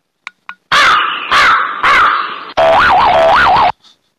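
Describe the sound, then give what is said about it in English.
A birds sound effect: a few quick chirps, then a run of loud, harsh, crow-like caws in close succession with a warbling wavering tone, followed by a faint short bing at the end. “I would like to just the birds there. I could use that the little bing sound at the end there, but oh well.”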